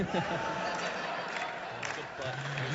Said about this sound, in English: Biggest applause we've got yet.